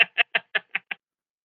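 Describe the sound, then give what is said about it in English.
Someone imitates a bird's squawking with six quick, harsh, raspy calls in a steady rhythm, each a little fainter than the last, followed by silence. “Like, you're just full-on bird squawking. She's not even making talking noises. It's just a lot of hissing and shrieking.”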